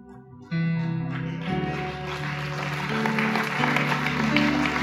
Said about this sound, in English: Are they clapping because you're the only one brave enough, or I'm not sure?